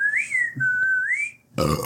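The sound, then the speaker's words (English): A person whistles the short, cartoonish Ed, Edd n Eddy whistle, the steady tone sliding up and down twice, followed abruptly by a brief gruff, noisy vocal sound. “Ed, Edd n Eddy whistle.”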